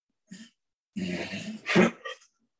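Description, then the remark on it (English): A sick dog hacks and gags: a short cough, then a long raspy retching burst, a sharper hack and a final small cough, with no talking. “Oh my God, my dog is sick, y'all.”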